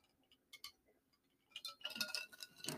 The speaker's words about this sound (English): I know y'all can hear the ice clinking in the glass. I'm going to put the glass down, but if you hear that, that's what it is.